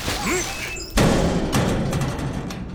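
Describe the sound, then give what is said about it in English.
A heavy dumpster lid slams shut with one loud, sharp bang, then a dense rumbling echo lingers, broken by a fainter knock. Faint whistling tones come before the slam. “Now, just help me close this lid really quick.”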